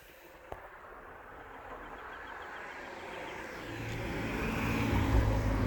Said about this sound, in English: Hear cars passing by, see the clear sky where I can see all the stars.